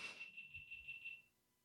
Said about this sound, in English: That was something beeping. Technology.